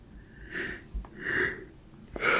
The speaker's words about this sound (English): See, that's one of the side effects of these Zolofts. It make me yawn like a motherfucker.